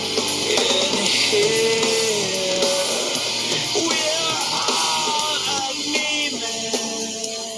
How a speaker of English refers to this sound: It also includes a woman screaming in the instrumental break about 30, 45 seconds later into the song. It is just haunting. It really gives me chills listening to this.